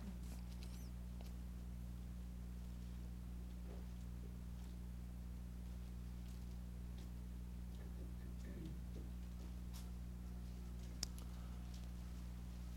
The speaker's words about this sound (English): I hear a few pages turning yet. Okay. Isaiah chapter 32.